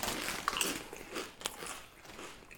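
Crisp, crackly crunching of gluten-free Cape Cod BBQ potato chips with 40% less fat being bitten and chewed, with several sharp snaps early on followed by steady munching, loud and with no talking.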